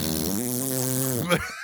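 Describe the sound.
A voice imitates the fart noise from TikTok videos, making a drawn-out, buzzing lip sound, steady for over a second before ending in a short sputter. It is fairly loud, with no other talking.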